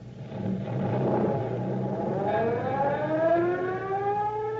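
A fire engine siren wails as the vehicle roars off to a fire, its rising and falling tone sweeping upward over a steady engine rumble, loud throughout with no talking.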